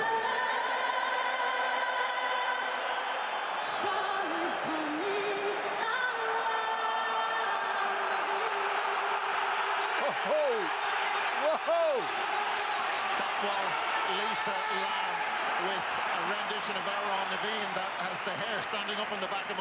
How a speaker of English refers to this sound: The crowd has gone into uproar.